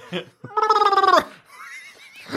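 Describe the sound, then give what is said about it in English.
A person imitates a horse's whinny with a loud, wavering, rapidly pulsing vocal sound lasting under a second, preceded by a short vocal burst and followed by faint, warbling high tones. “That's a horse noise.”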